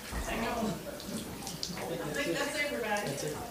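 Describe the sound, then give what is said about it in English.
Water sloshes and splashes as a person is lowered and lifted during a baptism by immersion in warm water on Christmas Eve, with voices murmuring and talking in the background throughout. “Yeah, I now baptize you in the name of the Father, the Son, and the Holy Spirit.”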